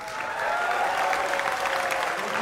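Steady audience applause following a political campaign speech, a dense wash of many hands clapping at a fairly loud, even level throughout, with no pauses and no voices standing out.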